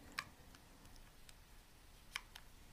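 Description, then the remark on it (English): Two crisp button clicks about two seconds apart, with a few fainter ticks between them over a quiet background. The clicks sound like a smartphone's buttons being pressed. “So cool button sounds, right?”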